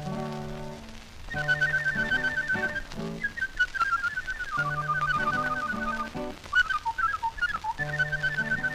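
A person whistles a lively melody, the clear pitched tune carried over an accompanying instrumental backing with steady harmonies and no talking.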